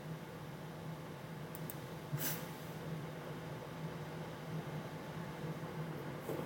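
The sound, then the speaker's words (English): A small cooling fan inside a drone runs steadily to keep the processor cool during a pre-flight check in a backyard, a soft even whir with a low hum underneath and a few faint clicks, with no voices. “I can hear the fan on the inside of the unit. Keep the processor cool.”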